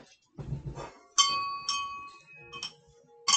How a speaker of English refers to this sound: This bell is gonna have a horrible death. I'm pretty sure there's a way you can disconnect the ringing bell from the middle.